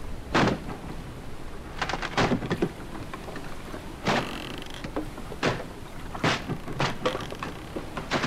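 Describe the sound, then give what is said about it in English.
A locked cabin door aboard a yacht being forced, with about eight heavy, irregular thuds and rattling jolts over several seconds, set against a steady hiss like rain or wind. No one speaks. “Cabin door's locked!”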